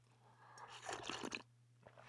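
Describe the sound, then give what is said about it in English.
A brief sip of tea, a wet slurping mouth sound lasting under a second, with a quiet hum behind it and no one talking. “Let me just have a sip off of my tea while I pull up my show structure.”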